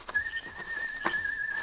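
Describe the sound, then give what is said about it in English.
A person imitates a peculiar croaking bird call as a warning signal, one sustained, steady whistled tone held for over a second at moderate loudness with faint background noise and no talking. “even now, as they crept through the underbrush, their escaped prisoner was sounding a peculiar bird call that would warn Dan and the Lone Ranger.”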